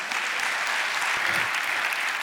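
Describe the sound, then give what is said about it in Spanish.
An audience applauds in a steady, dense wash of clapping that holds an even loudness for the whole stretch, with no voices rising above it. “Date un aplauso otra vez.”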